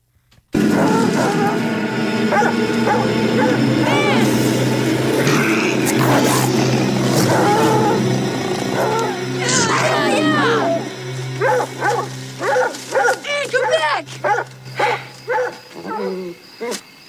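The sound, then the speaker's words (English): Hunting dogs bark, growl and snarl in a loud, chaotic fight with a bobcat, a dense continuous uproar that breaks into separate sharp barks and yelps over the final seconds. “His dogs run onto a bobcat, and it kind of leads into their demise.”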